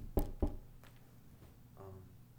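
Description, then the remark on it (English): Two quick knocks on wood in sharp succession, followed by a couple of much fainter taps against a quiet background with no talking. “And also, like, that's also, like, I'm not gonna die tomorrow, most likely, so hopefully, like, you know, knock knock.”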